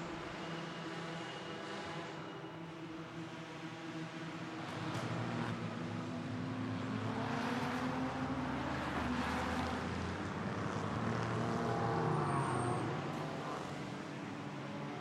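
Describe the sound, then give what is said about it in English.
Race cars roar around a track, engine pitch rising and falling as they pass, with a steady blended drone of several cars and no voices. “and in his honour we dedicate this broadcast to him and give him not a moment of silence, but a moment of noise from the track.”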